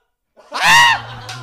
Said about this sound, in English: A gasp from the other room. From the other room.